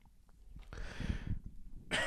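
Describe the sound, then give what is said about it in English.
A person sitting in an old wooden rocking chair holding a microphone lets out a harsh, choking cough, a strained, sputtering fit lasting under a second, followed by a brief pause and another sharp breathy gasp, with no talking. “whoa, excuse me. What was that? I'm getting choked up with the, hold on, I'm gonna have to burp.”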